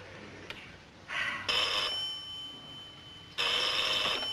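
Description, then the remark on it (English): A Western Electric rotary telephone, popularly called the Lucy phone, rings its mechanical bell in two rattling bursts, the second longer, preceded by a faint click; moderately quiet, with no voices. “That's a Western Electric phone.”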